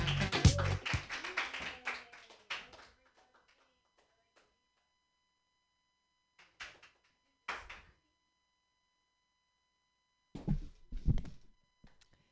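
A burst of audience applause at an open mic, loud and dense at first, fades out within a few seconds. A few scattered claps or thumps follow after a quiet stretch.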